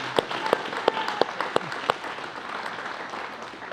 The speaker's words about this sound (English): Can we give a big round of applause for our panelists tonight for being here and sharing?